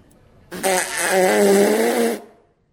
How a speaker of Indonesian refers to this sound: Biasanya bau. Nah itu kentut. Kalau kentut berapa kilohertz? Kalau kentut, kayak tadi ya? Itu mungkin bisa di atas 2 kali.